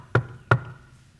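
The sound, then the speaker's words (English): Two firm knocks on a wooden surface, fairly loud, spaced about a third of a second apart, with a hollow low thud to each and quiet stillness afterward. “And then, 2 years into the famine, guess who comes knocking?”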